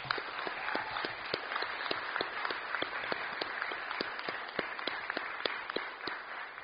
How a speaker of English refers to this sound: So let's give a round of applause to all the finalists.